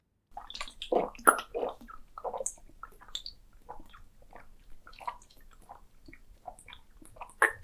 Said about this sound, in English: Ammu thought that she couldn't whistle because her mouth was dry. to blow out good whistles, your mouth can't be dry. So Ammu drank a big glass of water.